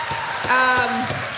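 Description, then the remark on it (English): A short burst of audience applause for the special master, a dense crackle of clapping with a brief high whoop or cheer rising over it midway. “Let's give the special master a round of applause.”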